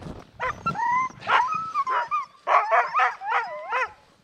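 A male sled dog being fitted with a harness barks and yips excitedly in a rapid string of high, rising and falling calls, loud and continuous with whining tones between the barks, and no one talking.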